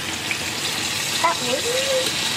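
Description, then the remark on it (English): Lumpia sizzle steadily in hot oil, a dense, continuous crackling hiss, with a brief faint voice rising partway through. “Sizzle, sizzle, sizzle.”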